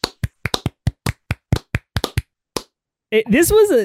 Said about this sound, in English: And as we do, we're going to go ahead and clap it out for Pammy.